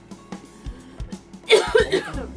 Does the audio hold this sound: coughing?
yes